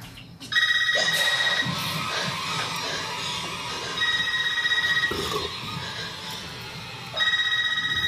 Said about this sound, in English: This ain't even my phone ringing.